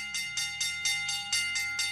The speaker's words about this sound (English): That's a good sound of bell. That sounds like really the one is, we used to.